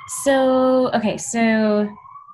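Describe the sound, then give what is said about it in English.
Two sustained, steady horn-like siren tones near a hospital, each about half a second long with a breathy burst at the start, blaring loud with a short gap between them. “So many sirens.”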